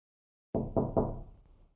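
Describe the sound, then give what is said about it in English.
Three quick, heavy knocks in a steady rhythm, loud with a dull low thud, their resonance fading briefly after the last one. No voices. “Bobby heard it again. The knocking sounds were back.”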